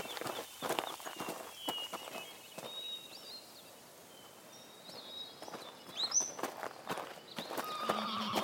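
A mountain horse's hooves clip-clop in an uneven rhythm at moderate volume, joined by a brief high neigh, with faint bird chirps and outdoor ambience in the background.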